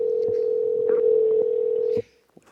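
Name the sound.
telephone dial tone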